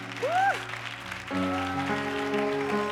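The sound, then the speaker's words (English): An audience claps their hands in a steady, continuous patter while sustained organ chords play beneath, with a brief rising and falling whoop near the start. “Clap That's your hands.”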